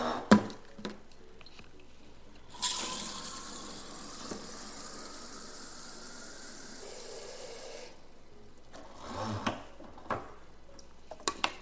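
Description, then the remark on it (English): Water runs steadily from a tap into a Brita filter pitcher being refilled for several seconds, the tone rising slightly as it fills, framed by scattered clinks and handling knocks before and after. “Poured water in a cup from the Brita filter. Let me refill the Brita.”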